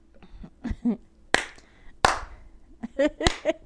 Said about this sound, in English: Rhythm. And we can't even clap or she snap. Likes, she tries to clap in time with music